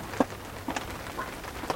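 Soft, steady rain hisses in the background on a rainy day, with a few distinct drops pattering at irregular moments. No voices, just the quiet wash of falling water.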